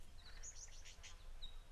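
A lyrebird mimics the chatter of a mob of fairy-wrens: a rapid run of thin, high-pitched chirps and trills, fairly faint, over a low background rumble.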